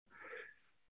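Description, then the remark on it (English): A single short, breathy sneeze, a faint burst of hissing air that rises quickly and fades out within about a second, with no talking around it. “Bless you.”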